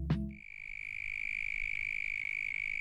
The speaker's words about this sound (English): Each species of mole cricket has its own chirp, but they tend to be one pitch, and this is then modulated at different speeds